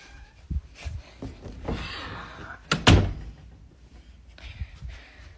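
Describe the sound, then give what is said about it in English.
Knocking on a door: a handful of dull, irregular thuds spread out over a few seconds, with one sharper, louder double knock in the middle. “It's just knocking.”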